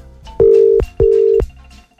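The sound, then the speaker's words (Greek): An outgoing phone call's ringing tone sounds twice through a handset, two steady mid-pitched beeps with a short gap between them, fairly loud, with no one answering and no voices. “Κοίτα να δεις που ο Χρήστος δεν σηκώνει.”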